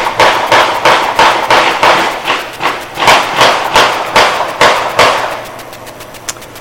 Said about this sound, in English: Fireworks or gunshots, I don't know which. That's a weird time for fireworks, isn't it?